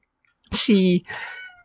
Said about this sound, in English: I have my cat yelling at me as I do this.